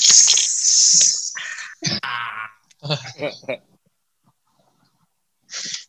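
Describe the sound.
A voice imitates a can cracking open: a loud, sustained hissing "pssshh" for about a second, followed by several short voiced sounds and a brief final hiss.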